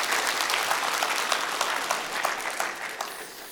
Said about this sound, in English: Let's just give a round of applause for CAP, and then I just want to finish with an opportunity to respond.